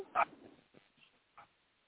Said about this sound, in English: Unfortunately, the dogs don't start barking too to somebody coming to the house.